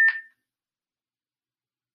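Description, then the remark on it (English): A single short electronic beep from a device's low-battery warning, a steady high-pitched tone lasting a fraction of a second, heard alone and followed by silence. “Hold on, ignore the beeping.”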